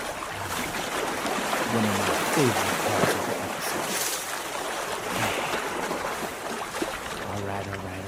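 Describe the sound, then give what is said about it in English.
A steady, continuous rush of flowing water, like a stream running over rocks, fills the whole stretch at an even volume, with a few brief low tones drifting through. “Next up, we're about to let the water flow. We're going to talk about the stream team.”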